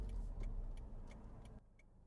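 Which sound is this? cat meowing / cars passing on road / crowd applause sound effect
cars passing on road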